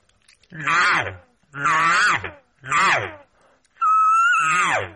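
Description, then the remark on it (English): Four drawn-out, nasal mews from a voice imitating an elk cow, each rising then falling in pitch, with short pauses between; the last one is higher and more strained. “You know, get those demanding mews inside there.”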